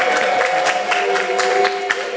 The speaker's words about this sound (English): It's like, clap for yourself, you are reading the Bible. Don't clap if you are not reading the Bible.